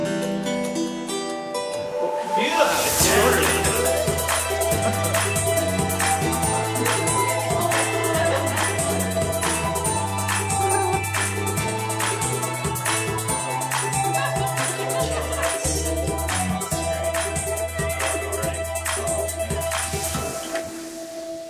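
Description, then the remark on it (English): A theme song, played a second time, kicks in after about two and a half seconds of near-silence, then plays loud and steady to the end, with a repeating bass line and regular punchy beats. No one talks over it. “I think they cheered over the theme song.”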